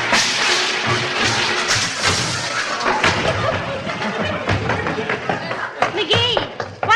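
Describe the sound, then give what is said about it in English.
Someone in a bathrobe tumbles to the floor with a heavy thud after shutting the refrigerator door on the bathrobe's tassel and walking away, landing on eggs, surrounded by a busy jumble of clattering, scuffling knocks and sharp impacts, while voices cry out over the commotion. “I got thrown, that's all.”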